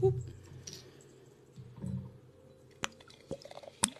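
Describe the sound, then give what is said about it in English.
A wine bottle being opened: low fumbling and handling noises, then a few sharp, crisp clicks and snaps as the closure gives way. “Let's crack it open.”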